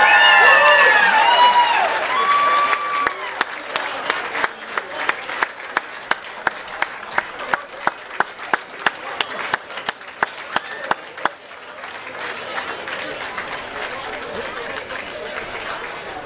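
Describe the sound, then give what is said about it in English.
A crowd applauds the inductees of the Casty School Athletic Hall of Fame, steady dense clapping with a few whoops and cheers at the start, then individual sharp claps stand out before the applause swells again into a broad, even wash. “One more time, let's give our Hall of Fame inductees a hearty round of applause.”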